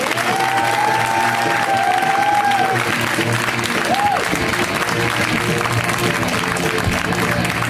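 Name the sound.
audience applause and cheering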